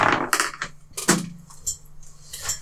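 A rapid series of sharp, hard clicks and clatters as dice bounce and tumble off a table onto the floor, scattered irregularly over a few seconds.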